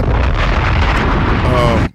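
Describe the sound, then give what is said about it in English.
A loud, sustained explosion roars with dense low-end rumble for nearly two seconds, then cuts off abruptly into silence, like a punchy bomb sound effect. “Dialysis centers in Chicago replacing liquor stores. Bombs!”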